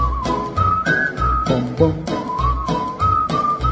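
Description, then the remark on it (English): Someone whistles a bright melody, moving between a few steady notes, over a bouncy musical backing with a thumping beat and bass. The whistle sits clearly on top of the accompaniment. “If only you'd come back to me, my lips would whistle a song.”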